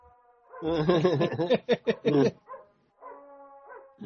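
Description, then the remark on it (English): A dog vocalizes with a rising, warbling whine or groan rather than a bark, followed by a few choppy, yelping bursts and fainter trailing whimpers, fairly loud with no talking. “It's not even barking.”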